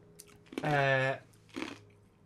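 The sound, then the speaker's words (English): Crunchy chewing on ice cubes, a few short gritty bites spread over two seconds, with a sustained voiced sound from a person in the middle. “If you could chew on the ice a little louder for that.”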